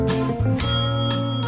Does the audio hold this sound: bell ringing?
yes